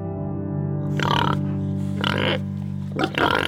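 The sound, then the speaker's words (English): A pig kept as a pet at Kibbutz Misra grunts and snorts in three rough bursts over a steady low background hum, with no one speaking. “Though Misra no longer raises or sells pigs, it does keep a small, snorting reminder of its porcine past.”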